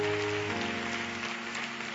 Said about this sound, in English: Can you give the Lord a hand clap right there? Hallelujah.